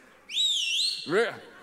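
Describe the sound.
A person gives a loud, wavering dog-calling whistle lasting under a second, sliding up and down in pitch, followed right away by a short burst of voice or laughter.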